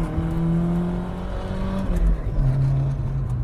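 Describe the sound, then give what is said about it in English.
A car with a swapped differential and an HKS cat-back exhaust revs under hard acceleration, a loud, continuous drone climbing in pitch, briefly dipping partway through before pulling again. No one speaks. “You can kind of hear it if I get on it. Do a little pull.”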